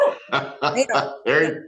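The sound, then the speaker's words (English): A pet dog barks in a quick run of about five sharp bursts, each short and loud with brief gaps between them, and no talking over it. “Sorry, my dog.”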